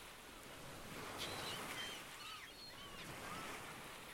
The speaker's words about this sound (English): Most meditations use an anchor. A focus on a sound or a word. Today, let's focus on the sound of the waves.